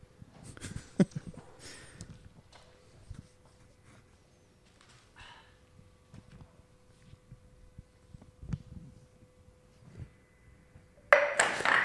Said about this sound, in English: Okay, and why the glass? I'm going to break that concrete slab with that glass without breaking the glass.